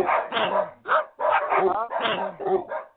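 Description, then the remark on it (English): Tabouli, a diabetes alert dog, barks repeatedly, a quick run of about half a dozen loud, tonal barks and yelps in rapid succession with only brief gaps between them. “But he's barking because he's letting us know that we've got our upcoming Collard”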